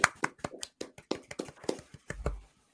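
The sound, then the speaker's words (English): Hands clapping away from the microphone for Poplar Ridge winning the 2022 Domi for most improved golf course in the Westman area: a quick, slightly uneven run of about a dozen sharp claps, fairly quiet, with no talking over them. “Clap away from the mic here.”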